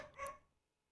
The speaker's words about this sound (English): Bad dog. Where did the dog come from? That dog's been silent for the last hour and a half.